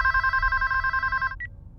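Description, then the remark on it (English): A telephone rings with a steady electronic trill lasting over a second, then a short higher beep follows before it stops; no one speaks over it. “Strange that you and I have never spoken on the phone.”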